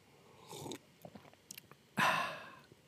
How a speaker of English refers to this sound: So here's to Rook as I sip my Rook coffee out of my mug.